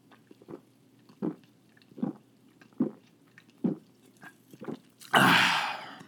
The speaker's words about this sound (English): Taking a sip.